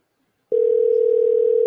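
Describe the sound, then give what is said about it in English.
After a brief silence, the ringing tone of an outgoing phone call that goes unanswered starts: a steady, single-pitched electronic hum that holds unbroken and fairly loud until the end, with no voices. “All right, I don't think he's going to answer the phone.”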